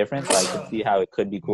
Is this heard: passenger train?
no